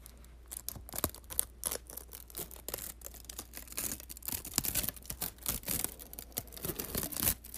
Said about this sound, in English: I am taking gum wrappers apart and splitting them. Fuck. Sorry, I ripped it. Yeah, you take the paper off the back of like... Do you hear that?